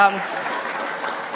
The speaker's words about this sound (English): Seriously, that does not deserve any applause at all.